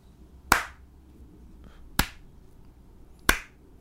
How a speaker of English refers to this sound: Is you hear slow, loud claps.